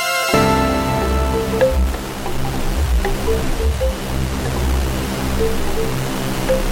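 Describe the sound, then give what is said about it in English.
A heavily distorted, experimental hip-hop beat plays loud and steady, with thick fuzzy noise over sustained tones and pounding low bass hits in an uneven rhythm; no one speaks. “That … ass distortion ass weird shit. It's not a … beat at all though, but still, it's that weird shit.”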